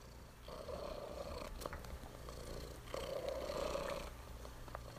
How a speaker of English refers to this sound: It is the sound of her cat Scooter purring and I love it. It's so sweet.